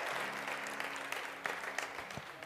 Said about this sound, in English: Somebody give the Lord a clap offering, amen?